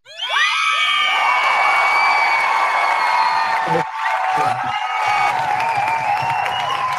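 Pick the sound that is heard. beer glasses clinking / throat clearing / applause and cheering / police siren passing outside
applause and cheering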